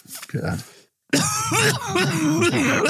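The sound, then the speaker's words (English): A short, rough throat-clear, a brief pause, then a loud fit of harsh, raspy coughing after taking a hit, going on in strained, voiced bursts until the end. “You don't cough, you don't get off.”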